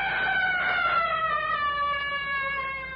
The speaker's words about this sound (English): Good heavens. What was that? Oh, it was only the cry of a hunting leopard,